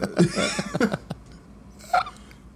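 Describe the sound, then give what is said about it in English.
Several short, harsh coughs, a quick cluster at the start followed by a pause and one more abrupt cough, with no talking. “I'm coughing on every bullet, dude.”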